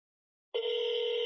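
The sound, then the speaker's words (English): After a brief silence, a steady electronic telephone ringing tone starts and holds evenly, the ringback heard through a phone line while a call to a GameStop store connects, with no voices. “Oh, the ringing.”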